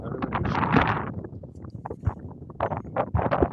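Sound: wind blowing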